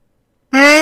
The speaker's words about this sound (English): No. I was yawning. I'm good.